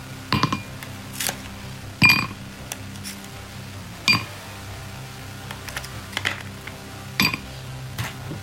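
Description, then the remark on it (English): Ice cubes drop into a glass, ready for cheap whiskey, one after another, making about six sharp, ringing clinks at uneven intervals, with quiet shuffling between them and no talking. “Let's get some ice.”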